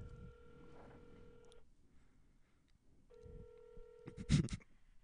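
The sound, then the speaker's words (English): An outgoing call to a Pizza Hut restaurant rings on the line: two steady electronic ringback tones, each about one and a half seconds long with a pause between, ending in a clicking thump as the call connects. “They're ringing.”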